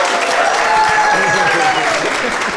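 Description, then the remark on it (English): A small group of around thirty or forty people in the Darnell room at a cathedral applauding together on request, a steady dense patter of overlapping claps sustained at an even loudness for a couple of seconds. “I might ask them to clap, actually, just to prove I'm not making a clap.”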